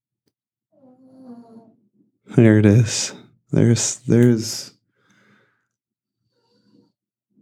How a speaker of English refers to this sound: Can you hear my dog snoring in the background?